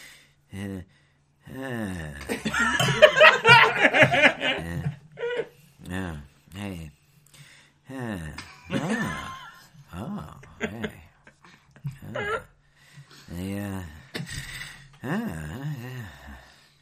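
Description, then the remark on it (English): A voice imitates Jeff Goldblum snoring: a long, raspy, breathy snore followed by a series of shorter voiced snorts and wheezes in an uneven rhythm, with brief pauses between them. “Can I do my Jeff Goldblum snoring real quick?”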